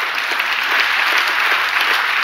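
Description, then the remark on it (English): A crowd applauds steadily, a dense, even wash of many hands clapping at once that holds a constant loudness throughout, with no voices standing out. “It's okay to clap from here on out.”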